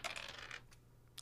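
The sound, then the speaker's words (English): Dice roll on a table: a quick clatter of small hard objects tumbling across a hard surface, settling after about half a second, followed by two isolated clicks. Fairly quiet, over a faint steady hum. “I swear the dice aren't loaded.”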